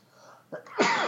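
sneeze

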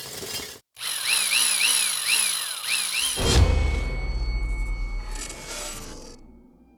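power drill running

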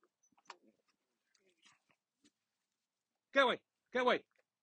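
dog barking

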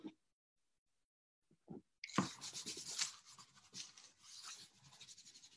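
drawing on paper

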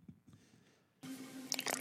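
liquid being poured

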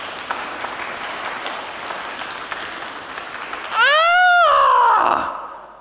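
crowd clapping

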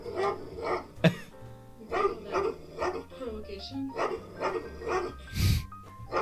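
angry dog barking

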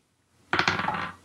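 dice being rolled

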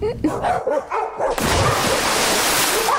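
dog barking

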